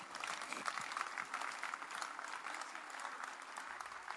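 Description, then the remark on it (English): An audience claps for the Lord Jesus together in a steady, dense burst of applause that holds at an even loudness for several seconds, with no voices rising above it. “Clap for the Lord Jesus.”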